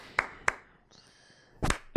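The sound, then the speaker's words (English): Two sharp hand claps land in quick succession, then after a short pause with a faint high tone, a single louder, slightly drawn-out clap arrives late, just before a voice starts. “clapping last minute clap. Just sploosh. I wanted to do a late clap.”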